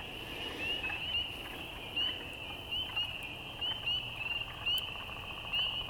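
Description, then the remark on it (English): A dense chorus of birds with a steady, shrill backdrop and louder calls popping out every second or so, broken now and then by brief bursts of woodpecker drumming. “Amazing bunch of sounds. I can even hear a woodpecker.”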